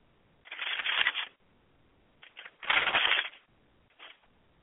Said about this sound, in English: I want to read something still. And I'm turning pages to get to it. Okay, I'm still turning pages. Okay. I'm still turning pages.